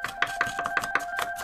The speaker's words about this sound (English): If you said fresa, which is the Spanish word for strawberry, you're correct. Way to go. Now, let's chop it up and add it to the fruit bowl. Everybody turn your hand sideways and start chopping.